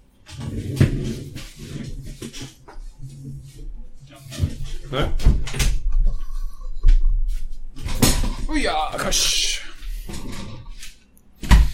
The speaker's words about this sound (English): I'm going to close the door.